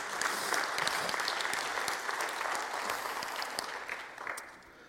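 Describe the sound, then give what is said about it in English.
A crowd of people breaks into sustained applause, a dense wash of many hands clapping at steady volume before easing off slightly toward the end. “And that, if one person claps, we all have to. Come on, somebody.”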